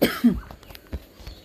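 A couple of short, rough coughs burst out at the start, followed by a few faint clicks and thumps amid otherwise quiet.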